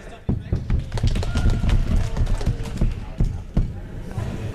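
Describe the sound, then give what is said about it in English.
A crowd of Icebreakers fans claps and stomps together in a loud, steady rhythm, sharp hand claps layered over heavy thudding footfalls, with a murmur of voices mixed into the din. “Now, as a matter of curiosity, if you are an Icebreakers fan, clap your hands and stomp your feet.”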